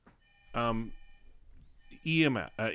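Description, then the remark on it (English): A cell phone ringtone chirps in short electronic bursts with lingering bright tones between them, and voice-like sounds mixed in. “And I forgot to turn off my cell phone.”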